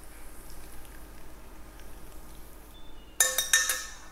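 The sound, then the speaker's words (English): Hot browned butter is poured into a pot of marshmallows near the end, a bright sizzling splash with a few pulsing clinks, after a few seconds of quiet hum. “So I'm just gonna pour all of this in with the marshmallows.”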